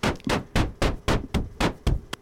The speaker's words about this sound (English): And that's just literally static, or what you call white noise, being filtered into a drum noise. And that is pink noise going on with that.